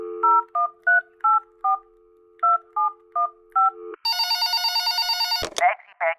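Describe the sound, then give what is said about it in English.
A steady dial tone with a quick series of dual-tone keypad beeps being dialed, followed by a loud, harmonically rich telephone ring that cuts off abruptly, then a brief voice. “Thanks so much for calling me back.”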